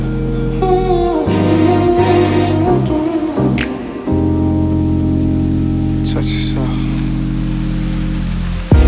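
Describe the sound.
Heavy rain pours steadily with a deep, thundery rumble underneath, mixed with sustained musical tones and a brief spoken voice.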